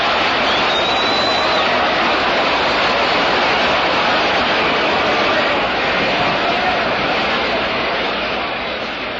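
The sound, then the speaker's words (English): The baseball crowd at Ebbets Field roars after Campanella's home run into the left field stands, making it a 4-3 game: a dense, steady wall of cheering that stays loud for about nine seconds before easing slightly at the end. “He can't get it, it's in there for a home run by Campanella.”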